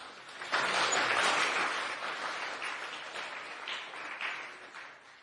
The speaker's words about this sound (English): we would like to express our gratitude to all the devotees, who were there in the front lines, who were there behind the scenes, and they made this Rath Yatra festival a huge, grand success. So a loud round of applause for all the organizers, please.